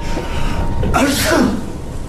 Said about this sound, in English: Oh yeah, he does like a fake sneeze. It's like, make sure you don't get sick, Alex. And then he goes, "Achoo." But it's one of the worst. No, it's terrible. Like, it's famous for being some bad acting, basically.